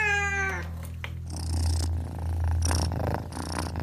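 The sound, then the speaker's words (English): A cat purrs loudly and steadily with affection while rubbing against a person's legs, a continuous low rumble throughout, opening with a short meow before the purring carries on alone. “Scarlet rubs up against her legs, purring loudly with affection”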